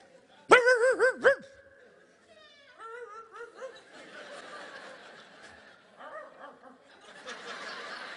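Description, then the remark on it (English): An audience of people imitate dogs, starting with a few loud, harmonic woofs and howls, then dissolving into scattered yips, barks and laughter from many voices. “Man, we got a bulldog over here on this side over here. And now they're all barking.”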